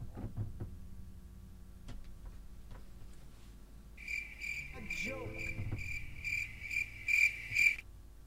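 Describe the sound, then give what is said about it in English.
Crickets chirp in a steady, bright pulsing trill that enters midway and grows louder toward the end, preceded by a few soft ticks and faint low rumbles. “Those crickets, because we didn't get a joke from Tony.”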